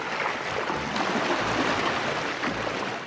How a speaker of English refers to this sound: but two inventors, a sailor and a windsurfing champion, convinced her to take a ride on a new kind of taxi. They're calling it a sea bubble, a zero emissions boat that appears to fly above the water.